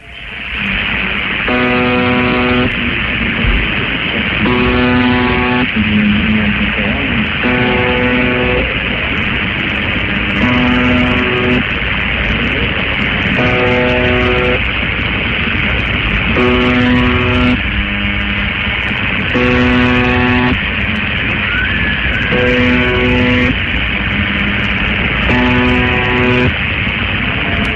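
A woman's scream-like wail rises out of constant, loud radio static, recurring about nine times at steady intervals of a few seconds, each cry held for roughly a second; faint whispers can be heard at the start.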